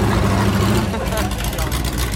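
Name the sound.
racing car engine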